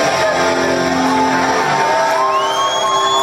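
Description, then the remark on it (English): A loud crowd at a live band performance cheers and whoops continuously, with a dense wash of voices and a few rising high-pitched whoops and yells cutting through near the end. “Gotta love the crowd.”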